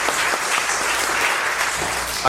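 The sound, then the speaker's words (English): A crowd of people clapping steadily, a dense, sustained patter of applause at moderate loudness that continues evenly throughout without any voices standing out; a round of applause at a church service broadcast on KMCH 94.7 FM, thanking a listener for a gift. “Let's give Ruth, she'll be listening in, so we'll give her a round of applause today.”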